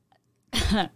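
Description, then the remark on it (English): A person imitates a hiccup with a voice: one loud, abrupt vocal burst after a brief quiet moment, then fading out. “Hiccups. Yes.”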